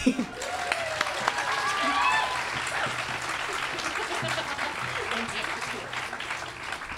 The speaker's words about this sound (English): Now, I want to give another clap